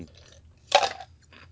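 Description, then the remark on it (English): A single sharp crunch of an ice cube being bitten, followed by a few softer chewing crackles against a quiet low hum. “Hold on, let me eat this ice cube for a second.”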